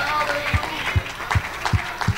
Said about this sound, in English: Oh, will you clap your hands to the Lord?